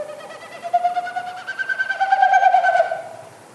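A bird's courtship winnowing, made as each wingbeat pushes air through its stiff outer tail feathers: a rapid, tremulous hollow hooting that rises in pitch and grows louder over a few seconds, then fades away, heard alone.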